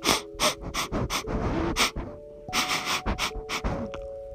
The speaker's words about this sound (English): That's when I heard a snuffling noise.